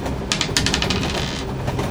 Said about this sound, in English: Rolling back off the table on my side. And if I fail, it doesn't count because it's his roll. No, if it comes up zero on this 10-sided dice, then the connection did not work.